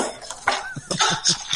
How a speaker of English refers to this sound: This week, I'm going to be drinking Quellbrunn Brandenburg Water Classic with bubbles in it. So I'm going to pop a couple of ice cubes in.